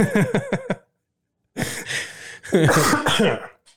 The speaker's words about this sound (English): First cough of the day.